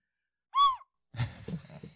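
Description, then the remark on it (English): A single short tin-whistle toot, sounded each time a character attacks in a game, a bright hooting note that swells up and dips back down in pitch, followed by a pause and then a burst of rustling, breathy noise. “Remember, every time I attack something, a little whistle noise comes out of my tin whistle.”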